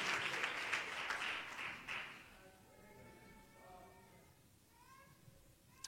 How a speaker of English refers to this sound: Give the Lord a big hand clap of praise, and you can be seated.